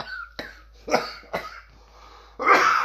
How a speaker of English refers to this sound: See, and that's why you're coughing. Oh fuck. You know, when I laugh, I cough. That's all year round.